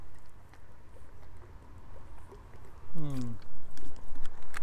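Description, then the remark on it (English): Someone drinks gazpacho water: quiet wet mouth sounds build to a short, squeaky gulp, followed by a few soft smacking swallows over a low background hiss. “And let me get a little bit of my gazpacho water.”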